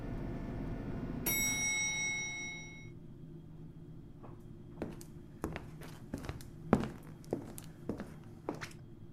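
A bright chime rings out and fades, then a person's footsteps walk along a corridor to room 406 at a steady pace, about seven clear steps on a hard floor, then stop, with no talking.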